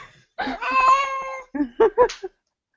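A cat named Molly, protesting at being picked up, lets out a long, drawn-out complaining yowl, followed by a few short, sharp protesting mews, fairly loud with no talking.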